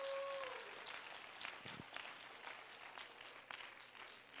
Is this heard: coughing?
no